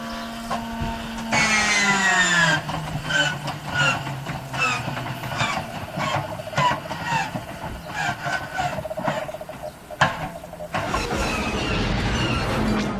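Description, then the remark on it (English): An old biplane motor, cranked up to a high RPM and then kicked in mechanically, starts with a high, squeaky whine sliding over its low drone, then settles into a loud, rhythmic chugging pulse that runs on steadily with no voices. “was actually a little snippet of a sound that an old biplane motor makes when you crank it up to a high RPM rate and then you kick in the motor mechanically, and that sound of it kicking in, a squeaking sound, is what's used for the walker lasers.”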